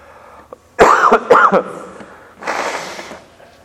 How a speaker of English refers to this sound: You'll just have to suffer through this, too. Sorry. Not only his sermon, but gross coughing. Excuse me.